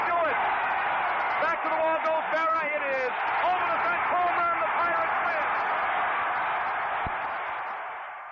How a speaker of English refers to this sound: The roar of the crowd continues uninterrupted for 35 seconds. Then, ladies and gentlemen, Mazeroski has hit a 1-0 pitch over the left field fence at Ford Field to win the 1960 World Series for the Pittsburgh Pirates by a score of 10-0.